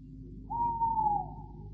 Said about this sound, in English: Has it ever occurred to you, Canon, that an owl chooses the oddest place in which to conduct his romantic exploits?